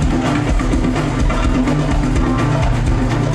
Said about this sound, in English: Driven by the pulsating beat of the krakibs, metal castanets that are played at astonishing speed.